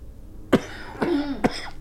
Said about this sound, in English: I'm coughing like crazy. What's with the coughing? It's Santa Ana's. I was gonna say it's that. It's the allergies.